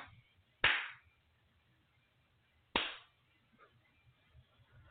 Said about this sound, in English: All right, I do a little clapping, clearing there.